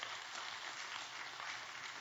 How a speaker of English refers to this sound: Now, I have three men that I want to come, and they're going to assist me this morning with this illustration. And so will you give my three men a great big hand clap as they come up here?